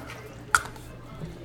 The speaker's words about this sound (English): A water bottle out of here. You know, I look over at Jeeves every time we do the water bottle thing where we squirt it out of a water bottle. He's so, like, disgusted at us.